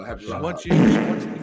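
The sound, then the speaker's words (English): A voice briefly speaks, then a loud, raspy fart sound effect, played by clicking the wrong soundboard button, blares for under a second, a low, buzzy, noisy burst that cuts in abruptly and stays strong until the end. “You just clicking farts?”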